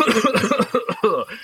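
A string of rough, close-up coughs comes in quick, uneven bursts, several hacking fits running together with short gaps between them, fairly loud and with no talking.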